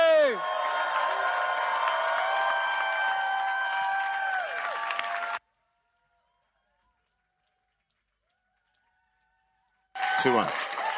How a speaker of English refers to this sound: If you are excited as I am, why don't you stand to your feet? Why don't you make some Holy Ghost noise? Why don't you clap your hands as we welcome to the pulpit,